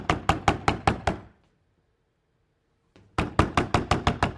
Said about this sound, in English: Yeah, I know, but stop knocking out. He's banging. He's a pest, man. This guy's knocking on the door, and finally he's knocking and knocking and knocking, and out of sheer doggedness, I'm not going away, you know, kind of thing.